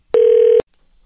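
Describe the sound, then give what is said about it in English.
A single loud, steady telephone tone lasting about half a second, starting and ending with a sharp click, then near silence, as a phone call is placed. No voices. “So let me try to get my dad on the phone and get that out of the way before we talk to Mike DiStefano.”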